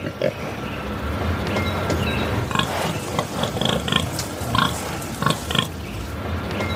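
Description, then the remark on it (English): A pig named Bella grunting, fairly loud, with a run of short rough snorts and grunts coming in quick bursts over a constant noisy background, busiest in the second half, recorded for the Google Translate for Animals app. “As you can see, there's a large range of animals to choose from. I choose pig. Then I make a recording.”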